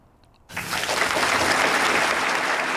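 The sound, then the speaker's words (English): After a brief quiet moment, an audience of about 1,000 people bursts into sustained applause, a dense, steady wash of many hands clapping at once that stays loud to the end. “They do eventually clap.”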